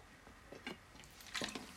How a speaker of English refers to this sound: I'm actually going to have a sip of my juice just as a sec. So stand by.